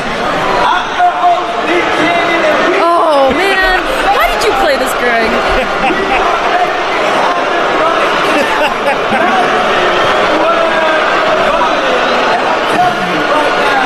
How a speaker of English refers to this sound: It's a crowd of about 20,000 people booing him while he's trying to film this promo. Alright, well, anyway, it goes on for about 3 minutes.